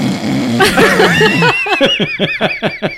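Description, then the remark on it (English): A voice imitates a neighbour's snoring heard from upstairs at night, with a drawn-out, rasping vocal sound, then breaks into rapid, rhythmic bursts of laughter that pulse about six times a second until the end. “at night we would hear her snoring.”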